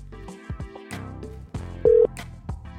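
Telephone dialing tones beep in a quick, uneven series of short electronic pitches as a phone call to Kopi is placed, with one louder steady tone near the end. No one speaks.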